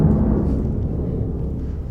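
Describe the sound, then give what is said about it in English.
A deep, rumbling roar of air show planes, heavy in the low end, holding steady and loud for the full two seconds with no voices. “I don't think the air show's still happening, is it? Yep. Yeah, yeah. I'll try to talk louder than the planes, I guess”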